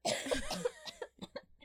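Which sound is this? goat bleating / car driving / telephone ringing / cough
cough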